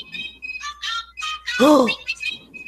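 A phone ringtone in a Pokemon game plays a quick, bright melody of high electronic beeps in short repeating bursts, with a person's voice briefly exclaiming over it midway.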